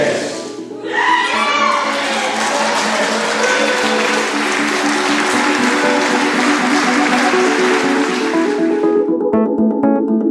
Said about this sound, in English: What a fantastic day for the Scottish deaf community. Watching the video, hearing all the applause and cheering, seeing the enthusiasm on people's faces, the rotating hands indicating applause, it still moves me to this day.